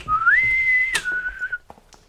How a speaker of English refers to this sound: I'd like to hear a bosun's whistle as I move my way into my nautical chambers.